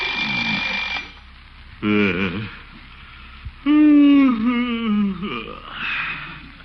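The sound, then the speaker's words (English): An alarm clock rings in bursts early in the morning in the town of Summerfield, its bright metallic jangle sounding while a man groans and yawns drowsily in between and over the ringing. “Oh, alarm.”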